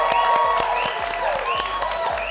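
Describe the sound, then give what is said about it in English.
Steady, dense applause from an audience for Tim Wise: many overlapping claps forming a loud, continuous wash, with a few sharper individual claps standing out and a faint murmur of voices mixed in. “Give it up for Tim.”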